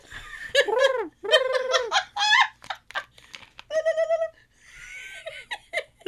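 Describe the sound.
A person's voice mimics a turkey gobble in several rapid, warbling bursts with bubbling pitch sweeps, fairly loud, followed by breathy giggling trills.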